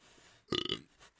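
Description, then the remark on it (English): A single loud, guttural burp after eating ribs bursts out for about a quarter second, raspy with a pulsing croak, followed by faint breathy noise. “Oh, my burp.”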